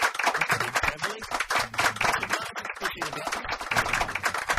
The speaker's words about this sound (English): Just some polite applause, as you can hear them.